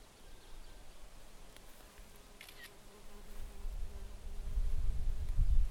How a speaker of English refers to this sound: There's bees everywhere, and flowers.